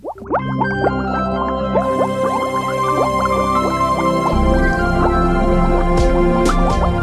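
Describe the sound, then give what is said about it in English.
Liquid bubbles steadily and loudly, a dense stream of quick rising blips and pops overlapping for several seconds, with no one speaking. “When you hear that bubbling sound, get ready for another episode of Truth in the Test Tube”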